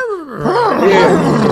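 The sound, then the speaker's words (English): A person's voice mimics a horse's neigh: a loud cry that slides down in pitch, then breaks into a rough, wavering whinny lasting over a second, with no other sounds. “I mean, that's okay, cool, but we wish the nay. Much better.”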